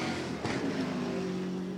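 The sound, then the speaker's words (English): The engine of Antonio Garcia's Corvette race car revs up as it accelerates out of the pit lane after a fuel and tyres stop. Its loud whine rises steadily in pitch, with a burst of roar near the start and no voices. “Been a quiet race for Corvette, but came in out of the lead, Antonio Garcia, and takes the car back out again.”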